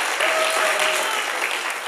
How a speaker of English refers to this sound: Were you wolf whistling there? That wasn't you. Well, somebody else was wolf whistling at your husband, so you just need to know that.